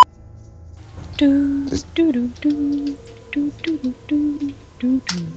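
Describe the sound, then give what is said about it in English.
A voice hums the theme tune of the children's TV show Art Attack in a series of short, rhythmic low-pitched notes with small melodic steps up and down, fairly loud and with no other sounds. “Oh, that's not The Sims, it's That's the theme from Art Attack, you know, when they're spanning through the kids' crappy drawings.”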